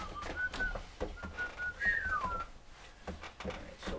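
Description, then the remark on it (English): A person whistles a short, wandering tune, the thin pitched notes rising and falling over a few seconds, with faint background noise and no talking. “Are you whistling Tiny Tim, the turtle? I have no idea what I'm whistling.”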